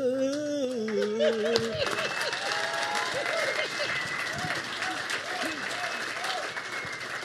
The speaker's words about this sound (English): You have a lot of, you're really brave to try to get a bunch of mostly old white boys to clap on time. They did it. They did it. It's unbelievable.